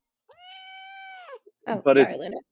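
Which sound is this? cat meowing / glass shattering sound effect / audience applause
cat meowing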